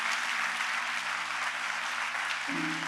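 A church audience claps for Jesus steadily, a dense, sustained wash of many hands with no pauses, while a low droning tone holds underneath and shifts pitch near the end.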